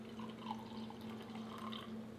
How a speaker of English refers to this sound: So the coffee is ready. Did it steep long enough? Yeah. Okay. It was 5 minutes. Pour me some. Okay. We're repping our friends at Nice Guys Pizza with their Nice Guys coffee mugs.